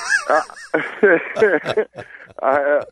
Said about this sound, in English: like Kirk's rooster.